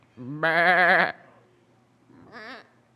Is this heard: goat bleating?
yes